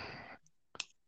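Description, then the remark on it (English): A ballpoint pen clicks twice in quick succession, short sharp snaps, following a brief burst of soft rustling noise. No one speaks. “It sounds like one of y'all using a typewriter. No, that's me clicking my. It's me clicking the pen.”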